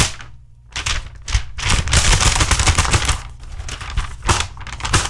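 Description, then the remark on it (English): A sheet of paper is rattled and shaken, a brief crackle, a short pause, then several seconds of loud, dense, rapid crinkling and flapping with no voices. “Whenever I give the punchline, I rattle the paper.”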